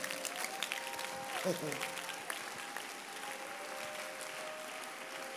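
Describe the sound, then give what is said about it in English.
A crowd gives the Lord a standing ovation, clapping for Jesus, in a steady, dense, continuous patter of many hands, with a sustained tone and a brief swooping voice-like sound partway through. “The Lord bless those who are clapping and giving him a standing ovation, because this is what it is.”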